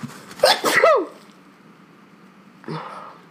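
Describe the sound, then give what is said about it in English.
A single loud sneeze with a sharp, breathy onset, followed by a brief quiet stretch and a softer rustling or sniffing noise near the end. “Bless you.”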